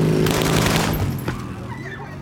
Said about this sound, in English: On the streets of Medellin, Blanco develops what becomes her signature method of assassination, the motorcycle drive-by shooting.